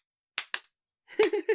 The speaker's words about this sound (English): Yeah, another one. Yeah. Yep. It's my fake birthday. I'll get all the high fives I can.